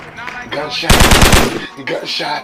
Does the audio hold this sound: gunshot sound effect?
yes